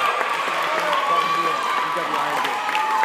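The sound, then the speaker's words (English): An audience applauds steadily for about three seconds, a dense, even wash of clapping mixed with crowd voices and a thin, high whistle-like tone running through it. “Let's have a round of applause for her.”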